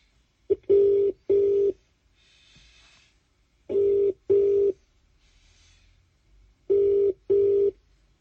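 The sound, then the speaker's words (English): A telephone ringing tone repeats three times as a call is placed to catch up before the start of the season, each a double burst of a low, steady buzzing tone, separated by pauses of quiet line hiss; no one speaks. “Just getting a quick bell to catch up before we start at season.”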